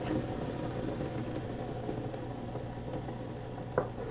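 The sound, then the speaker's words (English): A coffee maker pumps water from its reservoir with a steady, low, buzzing motor drone that holds an even level throughout, broken by one brief click near the end. No voices. “And the coffee maker is taking water from the reservoir, ready to make the next cup.”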